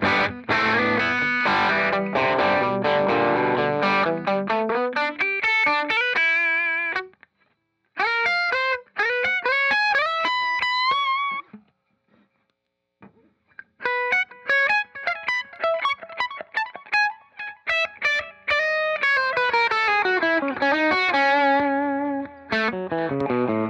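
An overdriven electric guitar played through an Eddie Boost Drive pedal plays chords and fast melodic runs with a gritty, saturated boost-drive tone, pausing briefly twice between loud phrases, with no voices.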